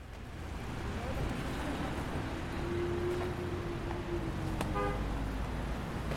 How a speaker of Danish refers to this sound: Et par biler kører gennem porten og ind i lejren. Der er kun lige akkurat plads til, at to biler kan snige sig forbi hinanden.